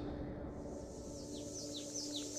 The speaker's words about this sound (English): The merciless sun beat down from overhead. Hidden cicadas lent their voices to a dull chorus.